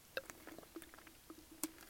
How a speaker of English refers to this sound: I'm going to grab a sip of drink. Maybe that'll help if I wet my palate. Hang on. Sorry if I gulp and slurp.